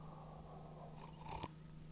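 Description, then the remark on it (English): A quick, quiet sip of coffee, a brief wet slurp partway through over a low, steady electrical hum, with no one talking. “Coffee sip.”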